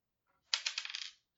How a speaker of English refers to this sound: Yes, I didn't know if you'd have actual dice. I have actual. Why would I not have actual dice? Because I love the. Yeah, you have to add the sound of it. Yeah, that's great.